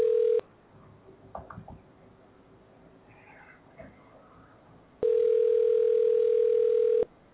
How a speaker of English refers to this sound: We're waiting for the phone to be answered right now. It's ringing.